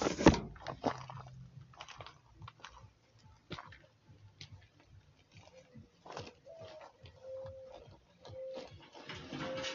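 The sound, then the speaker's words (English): A pig feeding: irregular wet crunching and chewing clicks, with a few steady tonal hoots from owls joining in the background toward the end. “Here you can listen to the sound of pig feeding.”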